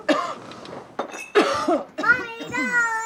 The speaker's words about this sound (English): We're introduced to her character with a cough.